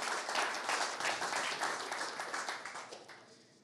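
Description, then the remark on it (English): A crowd breaks into sustained applause for a man having given up smoking, dense overlapping claps forming a steady, bright wash that holds strong before gradually thinning and fading toward the end. “Can we clap for that?”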